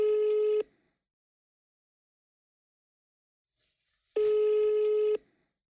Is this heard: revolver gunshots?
no